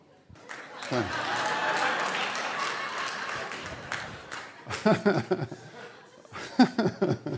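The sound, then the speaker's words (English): An audience member claps steadily for a few seconds, mixed with chuckles and laughter from the crowd, and then voices and laughter take over as the clapping fades. “It's completely ridiculous that somebody would clap for that.”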